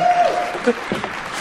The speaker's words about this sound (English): A round of applause for compressed air.